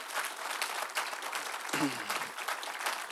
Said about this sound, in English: Can we give a round of applause for your pastors here in this house?